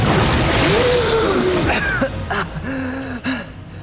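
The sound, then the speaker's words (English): A loud rush of churning sewer water gives way to ragged, desperate gasps and strained breaths, intense, as two people break the surface heaving for air. “erupted from the water, filthy and gasping, but alive.”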